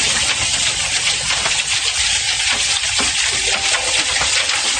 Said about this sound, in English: you know, we're sitting in the living room and listening to a roof basically get hammered by hail.